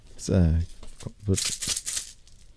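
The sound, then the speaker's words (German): A small gift package from Vera rustles and crinkles in a few short, bright, papery bursts, preceded by a brief voiced hum and some low thumps. “Und zwar, Moment mal, ich gehe das einmal vorne rascheln.”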